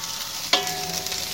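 Oil from frying broccoli sizzles and crackles steadily in a pot on a medium burner, a bright hiss with a sudden louder burst and a scrape of stirring, with no talking.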